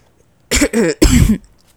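Three loud coughs in quick succession, the last one longer and harsher, with quiet before and after and no talking.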